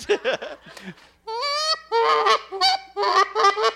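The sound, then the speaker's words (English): A goose call, used for calling in geese, is blown, giving a series of loud, nasal honks in quick bursts, with a few short clucking notes leading in before the longer, drawn-out honks. “So call in a geese or call in a goose.”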